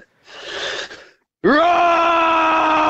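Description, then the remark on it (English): A man imitates a lion's roar with his voice: a breathy intake, a brief pause, then a loud, sustained, strained bellow that rises at the start and holds steady to the end. “would you do the roar for us now on the show?”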